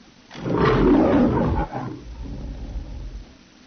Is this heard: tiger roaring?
yes